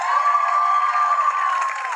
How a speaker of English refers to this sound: So important to thank them right now. So let's give a round of applause to people like Mindy Kaling.